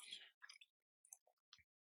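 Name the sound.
chewing food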